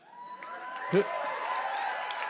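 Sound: audience cheering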